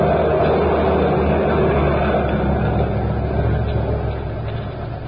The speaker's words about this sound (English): Driver! That truck wants to get to the street. Come on, let's get out of the way.